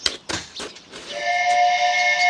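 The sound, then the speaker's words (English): A steamboat whistle from a boat coming around a bend of Roaring River blares in a long, steady, harmonic tone that swells and holds loud, preceded by a few brief hissing bursts of steam. “That malad was a steamboat whistle.”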